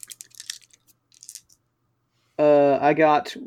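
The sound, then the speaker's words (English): Five dice clatter and tumble in a quick burst of sharp little clicks across a surface, settling after about a second and a half; after a short silence, someone starts talking. “I'm going to roll my stunt, which is five dice.”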